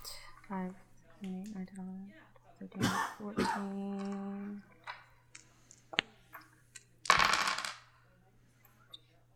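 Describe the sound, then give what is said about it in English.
A handful of dice clatter and rattle across a hard surface in a few short, sharp bursts as damage for a fireball spell is rolled in a game, with voices murmuring and a low steady hum underneath. “So many dice.”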